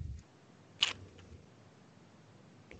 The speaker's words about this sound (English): Sorry. I was just savoring one of the last few sips of this 90-minute beer on this less than 90-minute show.